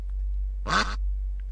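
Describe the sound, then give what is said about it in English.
A single loud, nasal duck quack rings out against low background hum, followed about half a second later by a much fainter, thin repeat: an echo made with an electronics effects box to simulate the duck flying past the side of a cliff 50 metres away. “Having proved that a duck's quack does echo, they felt free to play within an electronics effects box to help us imagine the duck flying past the side of a cliff, 50 metres away.”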